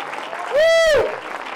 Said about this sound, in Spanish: Den un aplauso de alabanza al Señor.